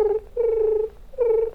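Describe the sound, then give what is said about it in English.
A voice imitates a purring tribble, the furry Star Trek creature, as it would come up to a Klingon, with three close, sustained, trilling hums separated by brief pauses, fairly loud and alone, with no words spoken. “So you'd go up maybe purring.”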